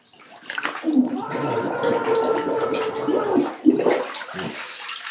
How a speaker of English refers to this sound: Okay, I'm on my knees now, kneeling in the bathtub, and I'm going to dunk my head under the water, and I will scream very loud, okay? So I want you to listen for my scream.